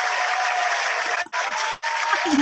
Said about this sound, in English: I mean, everybody, we're standing up. We're giving you a round of applause. There's no doubt about it.